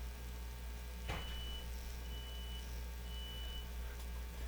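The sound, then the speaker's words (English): A building fire alarm, set off by someone's smoke detector, sounds in repeated high-pitched electronic beeps, each about half a second long, over a steady low hum, with a single sharp knock near the start. “Damn, y'all, this episode's so hot, we making a goddamn building fire alarm go off.”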